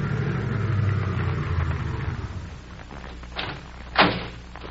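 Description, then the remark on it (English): A car's engine rumbles low and steady, then eases off as the vehicle pulls over under a tree by the road and rolls to a stop, followed by two short thuds near the end, one sharper and louder. “I'll pull under that tree.”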